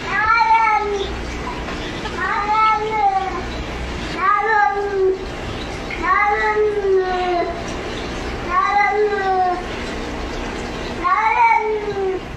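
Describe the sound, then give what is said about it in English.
A cat looking out a window at squirrels meows repeatedly in long, drawn-out, rising-and-falling calls, about six of them spaced a couple of seconds apart, fairly loud over a low background hum. “this cat spends his days staring out a window and saying, I love you to squirrels.”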